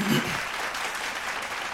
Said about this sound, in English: Clap that up. Clap that up, man.